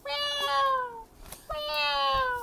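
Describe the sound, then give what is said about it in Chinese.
A kitten meows twice, each call long and drawn out with a slowly falling pitch, separated by a short pause. The meows are fairly loud, with no talking. “呼呼呼，小猫不再喵喵叫。”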